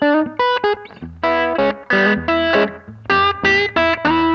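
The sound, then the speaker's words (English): A loud electric guitar plays a punchy, rhythmic riff of short chord stabs, each note trailed by a quick slapback echo from a Carbon Copy delay pedal, giving it a bouncing, spacey feel. No voices. “I'm a huge like … fan, and it gives you that kind of space echoey thing.”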